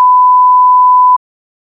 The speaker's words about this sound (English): For example, beep this person out.